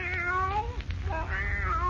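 A fawn-colored cat with blue eyes, named Kitty, meows twice, each call long and drawn out with a wavering, whiny pitch, over a steady low background hum.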